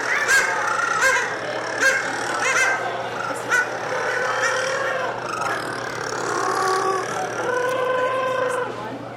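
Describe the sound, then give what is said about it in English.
A dense chorus of rockhopper penguins in a colony calling over one another, loud braying and honking cries with harsh harmonic tones, some rising in pitch, layered over a steady low background rumble. “You go to a penguin colony, it's like combines the ambience of a heavy metal rock concert in a cow barn.”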